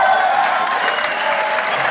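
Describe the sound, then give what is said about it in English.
A crowd applauds steadily, a dense wash of many hands clapping at once, loud and sustained throughout with no pauses or voices standing out. “I don't even clap for me for that on the local service, but anyway, you heard that from where we are.”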